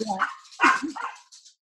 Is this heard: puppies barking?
yes